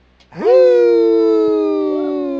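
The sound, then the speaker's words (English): A human voice imitates a wolf howl, used as the signal for winding up a show: one long sustained note that swoops up sharply at the start, then holds steady and slowly sags in pitch, loud and rich in harmonics. “That's the howl of the wolf, and that's the signal for winding up the show.”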